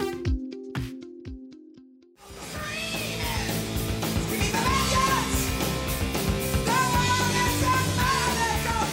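A loud heavy metal song with high screaming vocals bursts in after a sparse intro of a few clipped instrumental hits, then drives on with dense distorted guitars and pounding drums.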